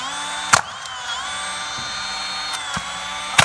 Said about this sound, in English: What makes a nail gun effective?